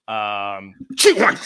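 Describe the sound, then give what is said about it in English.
A single sneeze, fairly loud: a drawn-out voiced intake building up, then a sharp, noisy burst of the sneeze itself. “Bless you.”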